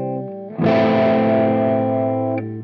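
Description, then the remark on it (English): A sustained guitar note starts clean, then harmonic distortion kicks in, thickening it with bright, buzzing overtones for about two seconds before it drops back to a cleaner tone. No voices. “One of the most common is called harmonic distortion, which adds overtones to the original sound.”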